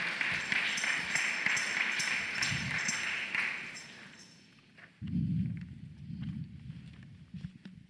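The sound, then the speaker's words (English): A church audience claps together as a clap offering to God, a dense, bright burst of applause for about four seconds, then it fades out and gives way to low, murmuring voices. “Let's give a clap offering to God.”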